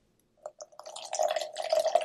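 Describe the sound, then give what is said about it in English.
Fresh water is poured into a shaker cup, starting with a few separate drips and splashes, then becoming a steady, gurgling stream that fills the cup. It is moderately loud, with no talking. “and we'll throw some fresh water in there, just like that. And give it a shake.”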